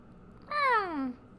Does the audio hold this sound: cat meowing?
yes